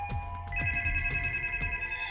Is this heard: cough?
no